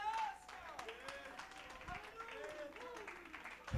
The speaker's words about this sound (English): Let's stand across the building and clap our hands and give him praise.